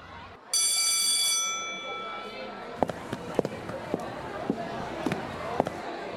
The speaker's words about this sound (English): Footstep sequence, or what are we doing? Just regular footsteps. Oh, here we go. Footsteps.